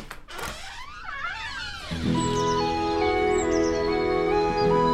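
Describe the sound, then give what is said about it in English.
A door in Peter Rabbit's burrow home unlatches with a soft thunk, then swings open with a wavering creak lasting over a second, giving way to a steady, fuller outdoor ambience of Peter Rabbit's garden with sustained tones. “if you're enjoying the greenery inside, wait until you see what's beyond that door.”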